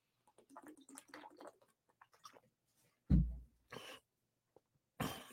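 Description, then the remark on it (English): Someone takes a drink of water: a soft thud of the glass, then a few short sips and swallows separated by brief pauses, after faint low murmuring. “I'm just going to grab a sip of water because I'm going to be long-winded on this one, I can guarantee you.”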